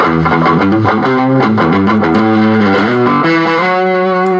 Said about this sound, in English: It's not mush like you hear on other fuzz pedals. Now, sometimes I want the mush, right? So again, I'm not knocking anything. It's just a different type of fuzz.